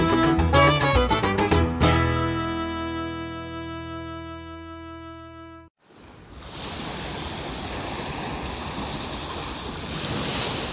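A song ends on a held, ringing chord, then a brief pause gives way to a steady, broad rush of Lake Michigan waves washing on the shore at its southernmost tip in Gary, Indiana, USA, loud and continuous with no talking.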